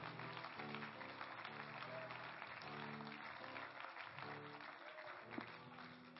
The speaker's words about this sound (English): Let's clap our hands unto the Lord.